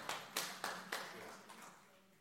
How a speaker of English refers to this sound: And I appreciate the hand clap there, but that was a terrible hand clap.